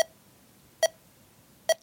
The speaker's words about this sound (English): So the very first sound that you hear in this song are these three little beeps.